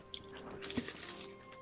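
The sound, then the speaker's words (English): An oily spring roll being bitten into gives a brief, faint crackly crunch midway through, a short cluster of crisp snaps over a quiet background hum, with no one talking. “You hear that crunch, ladies and gentlemen?”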